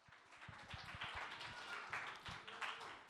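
An audience applauds, many hands clapping in a dense, steady wash of sound that stays fairly loud for the full few seconds, with no voices over it.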